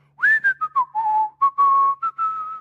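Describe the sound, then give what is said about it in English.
A man whistles a brief, simple melody, about eight clear notes that glide and dip before settling into steadier held tones, with no talking; it is the one tune his father used to whistle while going through the family store. “We had a store called Freedom and Service Store, and he used to go whistling, but he only whistled one thing. I think I can do it.”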